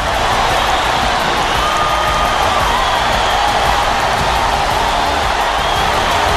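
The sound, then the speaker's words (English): A huge stadium crowd of BYU football fans roars and cheers after a touchdown, storming the field to celebrate a win over a number one ranked team, a dense, unbroken wall of noise, loud and sustained for the whole stretch with no single voice standing out. “The fans storm the field and celebrate their first victory over a number one ranked team.”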